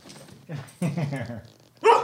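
A dog barks and yaps in a few short bursts, with a drawn-out grumbling vocal in the middle and a sharp, loud bark at the end.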